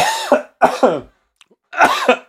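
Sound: cough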